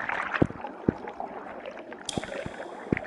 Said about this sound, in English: You hear a little bit of water moving around, like rippling.